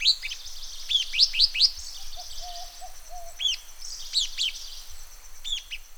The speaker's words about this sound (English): today we'll be hearing about an extraordinary little bird, the purple-crowned fairy wren. I'm sure you've seen fairy wrens. They're all over Australia, most beautiful little birds, but this one is different, as you'll find out.